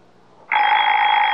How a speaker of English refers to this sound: Baby Ben's our alarm clock, honey. It never forgets to get us up. We could forget to plug it in. Baby Ben doesn't need electricity, dear.